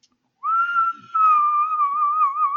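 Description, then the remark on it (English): A person whistles one long, steady note that wavers slightly in pitch and holds for about two seconds, fairly loud, with no talking. “But I told her that he's the Whistler. And he's always been the Whistler.”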